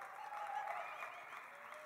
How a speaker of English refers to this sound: All the people clapping, you're a player.